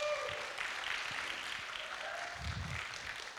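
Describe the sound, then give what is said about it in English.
A church audience applauds the worship team steadily, a dense, even wash of clapping hands that holds at a constant level throughout without pauses, with a low rumble swelling briefly near the end. “Come on, give them a good round of applause.”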